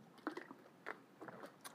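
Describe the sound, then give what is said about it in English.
Quiet, wet swallowing sounds as someone drinks water: a few soft gulps and mouth clicks spaced unevenly over a couple of seconds, with no talking. “I had to drink me some water.”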